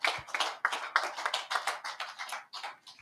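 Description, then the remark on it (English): An audience breaks into steady applause for some brothers being thanked, many hands clapping at once in a dense, irregular patter that stays fairly loud for a few seconds with no voices over it. “Clap for them.”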